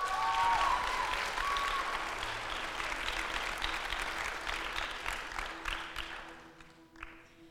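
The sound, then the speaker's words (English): Audience applause welcoming a speaker handed the microphone to share a story: a dense, steady patter of many hands clapping at full strength, slowly thinning out and tapering off toward the end, with a brief whistle-like tone near the start. “Can we give her a massive round of applause?”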